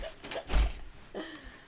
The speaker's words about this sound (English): Close the door. Okay. Are you sure you want to close the door after what just happened?